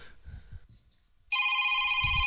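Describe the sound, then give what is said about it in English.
A telephone starts ringing partway through, a loud, steady electronic ring with bright layered tones, preceded by faint low murmuring in the background. “The phone's ringing.”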